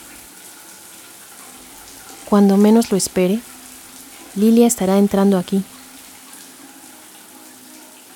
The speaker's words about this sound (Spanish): Así que decido entrar a una de las regaderas. Trato de concentrarme en el sonido del agua cayendo.